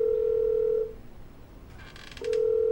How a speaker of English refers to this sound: he picks up the phone, and he calls Deputy Dillbender's house. Let's see, it's ringing. It's ringing.